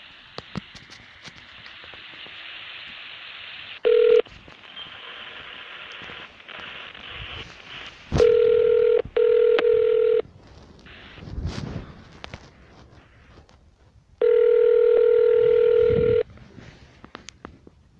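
A telephone line rings with steady electronic ringback tones in long, evenly spaced bursts, including a short blip, two close pulses and one long tone, over a faint hissy phone-line background, as a call is transferred to a detective's phone at the Crime Prevention Unit of the Ohio State University Police Division.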